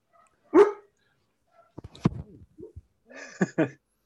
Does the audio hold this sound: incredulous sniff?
no